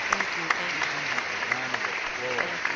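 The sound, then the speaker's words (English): A crowd claps steadily in dense, continuous applause with scattered sharper claps, moderately loud throughout, while faint voices murmur underneath. “Just give her a round of applause, though.”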